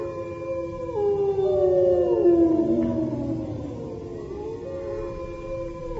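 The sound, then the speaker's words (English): Several wolves howl together in long, overlapping wails that rise and slowly slide downward, steady and fairly loud for the whole stretch, with no voices present. “The wolves.”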